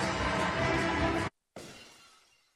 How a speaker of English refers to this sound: That's a good sound, right? Yes. I don't know what just happened there. All I heard was crashing glass.